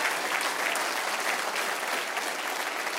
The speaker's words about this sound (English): Applaud if you agree with me. Please, do something.